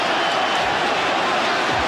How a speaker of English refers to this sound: Corner to Liverpool. Can hear it. Listen to that crowd.